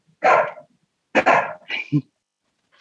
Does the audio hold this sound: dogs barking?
yes